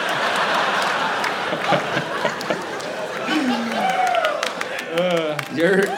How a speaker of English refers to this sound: And your friends are starting the applause.